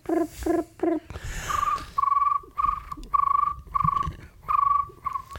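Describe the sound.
A voice imitates a cricket's chirp with a froggy, croaking quality: a few quick buzzy bursts, then a steady run of about seven clipped, tonal chirps, fairly loud, with no talking.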